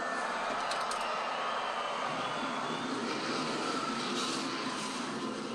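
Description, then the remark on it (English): Race car engines fire up on the command 'Gentlemen, start your engines' and roar together in a loud, steady, continuous drone that stays at full intensity throughout, with no voices. “All right, engines are fired.”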